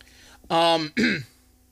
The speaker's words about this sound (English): excuse me for 1 second. Had to clear my throat.